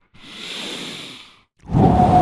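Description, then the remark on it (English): A long, airy exhale followed after a brief pause by a heavier, deeper breath, like someone forcefully breathing through a stifled yawn. “I'm not going to yawn again.”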